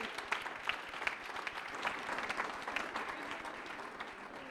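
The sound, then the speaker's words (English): An audience at an Oakcrest school event claps steadily for several seconds, a dense, bright patter of many hands with small sharp peaks scattered throughout, holding a fairly even level without voices. “I think Paula deserves a round of applause.”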